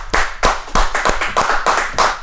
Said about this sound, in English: Yeah, and also, this is episode 10, man. Give yourself a round of applause. You know what I mean? We're coming. I know we lost some members along the way, but we're coming. I know the claps were stronger, but we're still here.